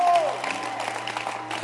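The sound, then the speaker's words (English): An audience claps steadily in sustained applause to appreciate its leaders, pastors and reverends, a dense wash of many hands, with a brief tonal note at the start. “Let's clap our hands for all our Basanta leaders. Let's clap for them.”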